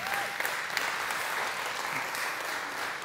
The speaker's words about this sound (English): You can actually clap for that. That'd be all right.